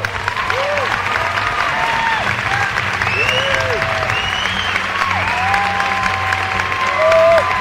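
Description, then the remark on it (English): Sustained applause from a large audience after a Sundance screening of the film The Matador, a steady dense wash of clapping with scattered whoops and murmuring voices rising through it, holding loud throughout and swelling slightly at the end. “But applause is cheap.”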